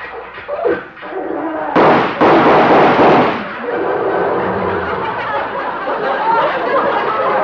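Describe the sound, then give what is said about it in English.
An old tractor engine sputters and chugs as a man drives it over for a visit, breaking into a couple of loud, sharp backfiring bursts before settling into a steady, rough rumble. “He's come over to see me in his tractor.”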